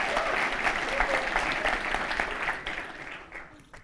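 An audience claps in a dense, steady burst of many hands, loud at first and then thinning out and fading over the last second or so.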